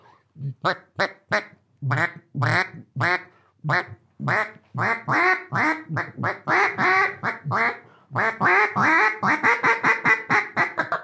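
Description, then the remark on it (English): A Chit Chat model duck call blown, producing a long run of loud, raspy quacks that quicken into rapid chattering bursts, with a brief pause before a fast final flurry. “That's one of the duck calls that you designed. That's called the Chit Chat, in case you forgot.”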